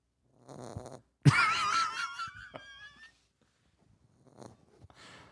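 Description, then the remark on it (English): A dog snores with a few raspy, wheezy breaths spaced a second or two apart, one drawn out into a whistling, whiny tone. No one talks. “Is your dog snoring.”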